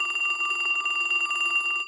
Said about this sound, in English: Then, the phone rang.